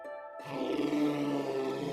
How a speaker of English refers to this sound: Later on, he kept hearing two distinct kinds of roaring in his room, which only faded away deep in the night.